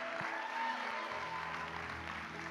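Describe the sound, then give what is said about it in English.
A church crowd gives AJ a big hand clap, clapping steadily throughout, a dense, continuous patter of many hands at an even loudness, with a faint sustained musical hum underneath. “Come on, give AJ a big hand clap.”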